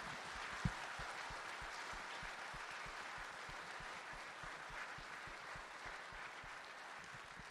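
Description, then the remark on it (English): A crowd at a church gathering applauds the people who prepared the food and set everything up, many hands clapping in a dense, continuous wash that stays even in loudness for several seconds without any voices. “I want you, if you would, please join with me, and let's give those that prepared our food and set all this up, give them a round of applause.”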